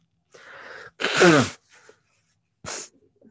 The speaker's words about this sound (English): I'm sorry. I really need to like blow my nose or something. God.